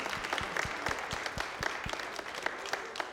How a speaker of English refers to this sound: Thank you for preparing breakfast for us this morning. Can we give them a hand clap today, please?